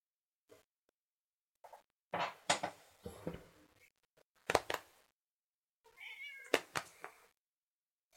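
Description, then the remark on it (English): A female cat meows several times, with drawn-out, wavering cries in three separate bursts, plus a few short sounds and pauses between them and no talking. “Okay, now just be quiet. Oh my goodness, she's a lap cat.”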